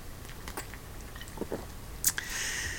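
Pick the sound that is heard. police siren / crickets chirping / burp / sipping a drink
sipping a drink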